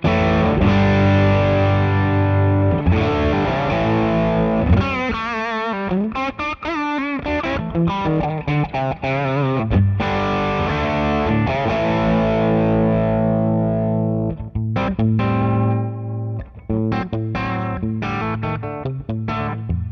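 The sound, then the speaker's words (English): A distorted electric guitar through a distortion pedal on its open setting, with bass all the way down, gain at 2, tone at about 10 o'clock and volume at unity, plays chords and quick riffs for about twenty seconds, sounding bright and buzzy, steady and loud with no voices over it. “So that's open setting, bass all the way down, gain up at 2, tone at about 10 o'clock, volume to unity.”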